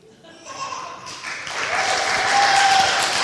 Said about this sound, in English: That was a very weak round of applause.